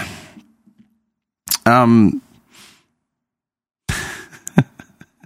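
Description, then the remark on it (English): A single short, voiced yawn with a falling, sliding pitch, close and fairly loud, set between bursts of breathy noise and a few soft clicks. “yawn.”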